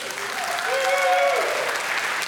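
Steady audience applause at a car club gathering, a dense crackling patter of many hands clapping at a fairly loud, even level, with a brief tonal hum rising faintly beneath it.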